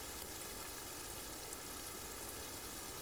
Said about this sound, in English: Now, begin to focus on the sound of the rain. Hear the natural pace of the rain as it changes in speed and weight.